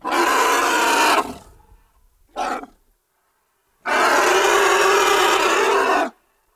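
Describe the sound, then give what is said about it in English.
A huge Asian elephant named Gita bellows in two long, loud, rough roars while charging in a zoo pen, separated by a short grunt and a pause, with no voices present. “we recorded Gita, a gigantic Asian elephant who's since passed away. And he led us in the pen, and Gita charged.”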